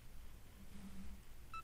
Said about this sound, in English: And again, we're hearing the progress beeps.